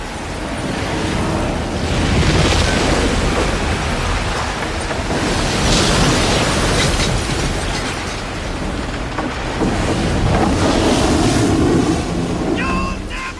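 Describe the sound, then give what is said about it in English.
A storm at sea from a film scene in which Lieutenant Dan shouts at God: a loud, unbroken roar of wind and crashing waves that swells and surges in heavy rolling bursts, with a brief higher-pitched cry rising near the end. “You call this a storm?”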